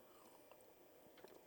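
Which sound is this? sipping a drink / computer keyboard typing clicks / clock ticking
sipping a drink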